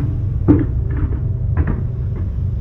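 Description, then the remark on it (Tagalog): A door downstairs is eased shut slowly by someone who has come in, a few soft creaks and muffled knocks spread over a couple of seconds, with a steady low rumble underneath and no voices. “Ilang saglit pa ay narinig ko na ulit ang pintuan sa ibaba. Ngunit sa pagkakataong ito ay dahan-dahan na itong isinara ng kung sino mang pumasok.”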